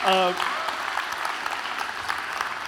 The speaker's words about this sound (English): Can y'all please give that brother a hand clap?